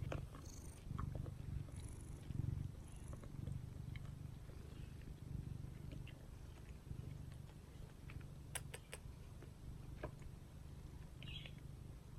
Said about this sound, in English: And I have in parentheses, when he said song, he means like purr, his purrs.